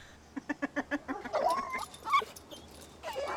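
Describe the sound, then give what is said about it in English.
A rapid series of short, yappy dog barks gives way to agitated whimpering and whining, several dogs sounding frantic, with no talking. “So she hops this fence, and there are all these dogs and cats that immediately lose their goddamn minds.”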